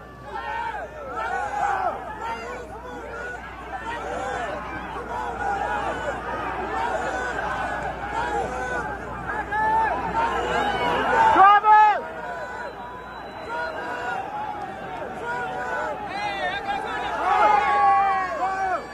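A dense concert crowd chatters and murmurs continuously, many overlapping voices forming a steady hubbub that swells louder near the middle and again toward the end, with no single voice standing out.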